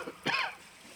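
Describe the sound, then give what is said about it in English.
A single short, tentative cough, soft and throaty, as someone announces their presence, stands alone against a quiet background with no talking around it. “Just as I was about to press play, somebody announced their presence with a tentative cough.”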